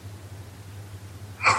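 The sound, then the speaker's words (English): A single sharp sneeze from an audience member bursts out near the end during a church sermon, over a steady low electrical hum, with no one talking. “Bless you.”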